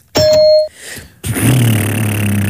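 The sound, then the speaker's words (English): A single bright electronic game-timer ding marking the start of a 20-second turn rings for about half a second, then after a short lull a person makes a loud, steady low droning mouth noise imitating an engine. “to signify the 20 seconds that we each have, you're going to hear a ding, 20 seconds of silence.”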